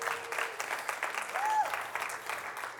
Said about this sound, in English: Was that not the best worship you've heard in a long time? Give our worship team a round of applause.